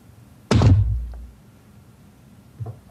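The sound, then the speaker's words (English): A metal d20 die, rolled during a tabletop roleplaying game, lands on a table with one loud, heavy thunk and a deep, booming tail that fades over about a second, followed by a couple of faint small ticks. “I rolled that dice. I was like, this is the same dice as last time.”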